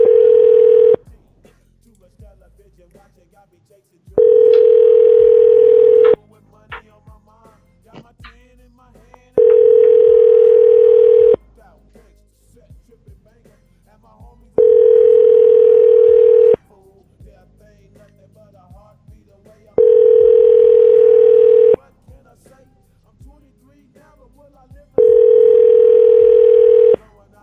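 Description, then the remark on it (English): The ringback tone of an outgoing phone call repeats six times, each steady buzzing ring lasting about two seconds with roughly three-second gaps, loud and clear with faint background murmur between rings. “If we call you, you better pick up.”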